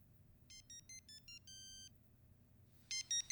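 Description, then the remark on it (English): A phone rings electronically on an outgoing call to a detective: a quick run of short stepped beeps, one longer held tone, then after a pause a louder burst of ringing begins, over a faint low background hum. “He pulled out the phone again and called Jerry Edgar.”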